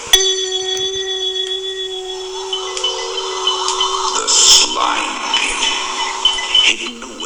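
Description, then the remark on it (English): A single bright, bell-like chime, the page-turn signal in a read-along storybook of Prisoner in the Slime Pit, strikes at the start and rings on with a clear sustained tone, slowly fading over several seconds as some faint rustling noise rises underneath. “Don't forget to turn the page every time you hear the chime.”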